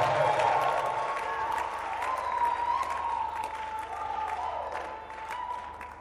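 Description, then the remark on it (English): A large crowd claps and cheers steadily for several seconds, a dense wash of applause with shouts and whoops mixed in, everyone responding together. “And if you can clap your hands and scream, the power of God is upon you.”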